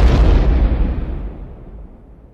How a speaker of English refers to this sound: Just moments later, a massive explosion rocks the craft.